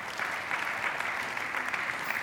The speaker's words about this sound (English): It always cracks me up when we give a smattering of applause. That's always, I always kind of have to, we don't know what to do in church as Baptists. I'm asking Baptists to clap, which is like asking Baptists to dance.